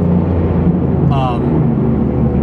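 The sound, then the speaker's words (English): A passing heavy truck's Jake brake (engine brake) roars in a loud, steady, low rattling rumble, heard from inside a car. A brief rising whine cuts through the middle. “That's a big old truck driver. That's his Jake brake right there.”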